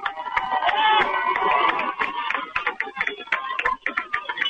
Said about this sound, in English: Milan fans on their feet making noise, cheering their defense on to make a stop here.